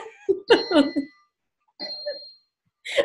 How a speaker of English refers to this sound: Oh, my clock is dinging.